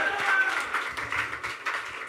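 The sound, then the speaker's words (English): A steady burst of audience applause, dense overlapping claps filling the space at moderate loudness for a couple of seconds, with a faint murmur of voices mixed in. “Yeah, just a big round of applause for the LSD teens.”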